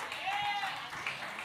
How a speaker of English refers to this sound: I love the claps for not liking people.